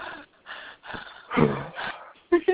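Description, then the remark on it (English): A voice imitates the heavy, raspy breathing of a phone caller in a series of drawn-out huffs, ending with two sharper, louder gasps. “But something that really dumb, you know, like that one dude that called in breathing all heavy and shit, huh?”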